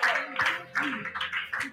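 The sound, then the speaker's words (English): An audience claps for the Lord together in a steady, fairly loud burst of applause, with voices calling out over the clapping. “Give the Lord a clap of him.”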